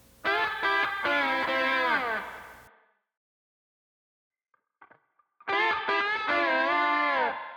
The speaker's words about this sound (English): I ended up keeping the notes for it and its place in the song, but changed it to a clean-sounding slide guitar with a short reverb to add more fluidity and a bit more grace to the part.